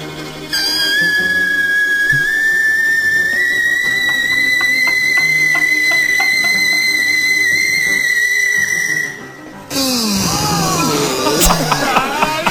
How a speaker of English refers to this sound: This is the first level he and did. And so in this, he's attempting to break a glass with his voice.